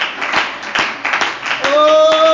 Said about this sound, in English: Clap your hands one more time to the Lord and give Him praise. Hallelujah, hallelujah.